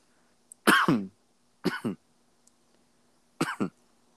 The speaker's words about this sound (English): That's the cough moment brought to you by Tums. I was trying to think of a cough drop.